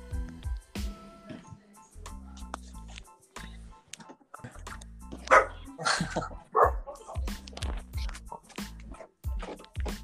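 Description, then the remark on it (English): A dog barks repeatedly in short, sharp bursts, with a few higher yips mixed in over a low background hum; a voice can be heard briefly. “Whose dogs are those? Sorry, my dog's a little bitch.”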